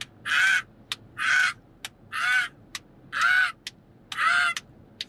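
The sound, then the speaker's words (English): A voice imitates a crow, giving five loud, harsh caws in a steady, evenly spaced rhythm, each about half a second long, with faint clicks between them and no talking. “I'm a crow.”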